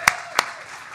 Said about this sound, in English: Scattered applause.